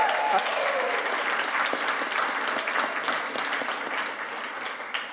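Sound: audience applause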